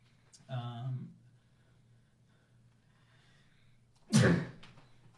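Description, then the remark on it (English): A single sharp sneeze bursts out near the end, after an earlier short voiced breathy sound and a few quiet seconds with a steady low hum underneath. “Bless you.”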